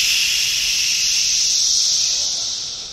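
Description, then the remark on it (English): A dense, steady chorus of cicadas buzzes continuously at a loud, even level, forming a hissing, noise-like drone with no breaks, easing slightly toward the end. “What's so interesting about the cicada sounds is when you just hear it for the first time, you just hear white noise.”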